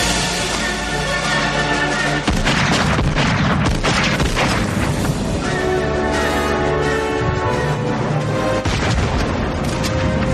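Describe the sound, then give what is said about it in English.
Heavy, booming gunshots from a movie scene, fired from Dirty Harry's gun, ring out in a loud, dense mix, with a sharp blast near the start and further reports layered over a sustained musical soundtrack. “Yeah, and I love the gunshot sounds.”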